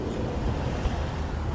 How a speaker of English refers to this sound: And just as I do, a car drives by, which sounds like a big growl in the headphones.